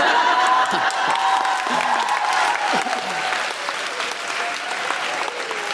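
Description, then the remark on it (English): Sustained applause from a sizeable audience fills the whole stretch, a dense wash of clapping with a few faint whoops and cheers rising through it. “But, I mean, we applaud that, but I could be dead.”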